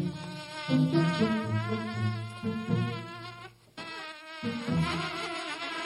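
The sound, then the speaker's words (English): Loud buzzing of flying insects drones continuously with a wavering pitch, briefly dropping away for a moment before resuming. No one speaks. “Bugs. I go outside to try to enjoy the beautiful weather and the buzzing starts.”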